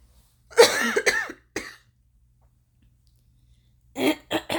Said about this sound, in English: That will be irritating for me to hear. So, give me 1 second. I'm going to cough.